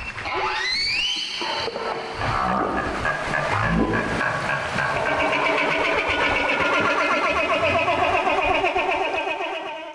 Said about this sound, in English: That was a social call from a humpback whale that's involved in a feeding behavior called bubble netting.